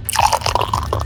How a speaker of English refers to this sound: Somebody just poured a beer. Sounds good.